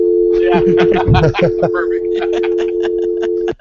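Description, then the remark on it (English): A phone hang-up tone, a steady, unbroken low hum holding for over three seconds under brief chatter and a string of sharp clicks, then cutting off abruptly. “chime in the hang-up.”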